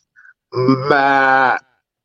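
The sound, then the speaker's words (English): A person imitates a billy goat with one loud, sustained nasal bleat lasting about a second, wavering slightly in pitch, preceded by a faint short breath. “I'm coming with my Billy Goat noise because he definitely got scapegoated, guys.”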